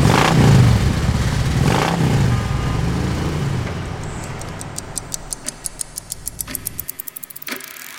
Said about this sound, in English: I hop on the back of Drager's motorcycle. I start it up, make sure that Jet is comfortable, and head to the docks.